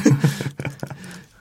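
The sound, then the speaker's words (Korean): A short burst of computer keyboard typing: several quick key clicks in an uneven rhythm, fairly quiet, with a faint low murmur at the very start. “저희가 타이핑하는 시간입니다.”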